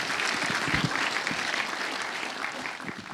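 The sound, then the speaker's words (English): A steady burst of audience applause, many hands clapping together in a dense, even wash that holds at a fairly loud level throughout, with no voices standing out, applauding an audience member wearing the first Christmas jumper of the season. “Round of applause for the first Christmas jumper of the season.”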